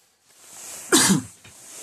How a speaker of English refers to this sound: Sorry, need a cough here. Not allowed to cough anymore these days, are we?